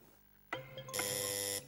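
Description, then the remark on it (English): A sharp click, then a loud, harsh quiz-show buzzer pressed for the Countdown Conundrum, sounding for under a second before cutting off abruptly, with no talking. “Fingers on the buzzers, fellas.”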